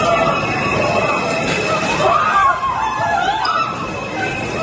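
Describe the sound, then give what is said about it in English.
A loud, chaotic crowd of people screaming and shouting as they run from trains during a peak-hour shooting at a subway station in Brooklyn, New York, around 8:30 in the morning, rising and falling wails layered over a constant heavy rumble of subway trains and station noise. “Chilling audio there of people running from trains.”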